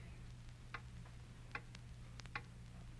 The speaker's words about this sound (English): Hear that clock?